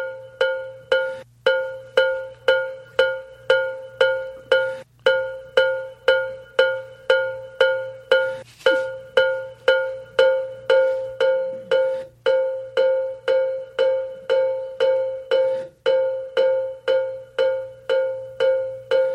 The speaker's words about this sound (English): So I'm playing the bell